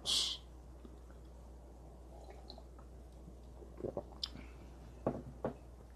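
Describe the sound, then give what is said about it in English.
A brief bright clink opens a quiet stretch, followed by a few soft slurping sips of coffee and swallows spaced a second or so apart, with no talking. “Sipping some coffee, man.”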